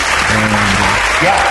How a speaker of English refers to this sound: So, well done. You get a round of applause, a virtual round of applause.